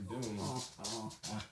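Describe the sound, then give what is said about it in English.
Dave's dog whimpers in three whiny, drawn-out bursts over about a second and a half, with a breathy edge and no talking. “Let me pick him up. Bro, Dave's dog, yeah.”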